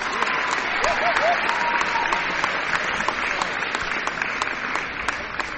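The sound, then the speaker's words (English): An indoor crowd at an Ohio High School Athletic Association game claps steadily for several seconds for the game officials, a dense wash of applause with a few scattered whistles and cheers rising over it. “Let's give our officials a round of applause.”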